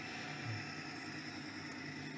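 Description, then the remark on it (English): A new Hemi V8 car engine, heard in a cell phone video, idles with a steady, deep rumble, fairly loud for a couple of seconds, with no voices over it. “Sounds cool. I do love the sound of those new Hemis.”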